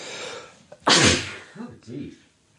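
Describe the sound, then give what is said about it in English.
A single loud sneeze bursts out sharply, followed by a couple of brief murmured vocal sounds as the person recovers. “I don't think they want to hear you sneezing in their ear.”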